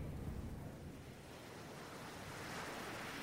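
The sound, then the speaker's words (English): Steady ocean surf rolls and hisses continuously, a broad wash of waves with some wind noise, moderately loud and unbroken throughout, with no voices present. “So the thing that's in the background is the wave or the whale and everything.”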